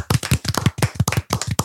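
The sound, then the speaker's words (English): Steady, rhythmic clapping from a crowd, sharp claps landing in unison about five times a second, fairly loud and with no talking over it. “And the crowd starts clapping.”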